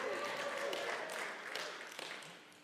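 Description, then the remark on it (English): A church audience gives a brief, lukewarm response to a call for an amen: scattered clapping mixed with murmured voices and a few calls, filling the room at moderate volume before tapering off over a couple of seconds. “I mean, I think we got a bigger cheer for the Ducks winning a basketball game.”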